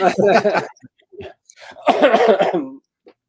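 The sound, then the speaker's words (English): Two bursts of harsh, raspy coughing from a person getting over a cold, separated by a short pause with a few faint throaty sounds, ending in a small breathy catch. “I'm getting over a cold, so please bear with me if I start coughing and hacking here.”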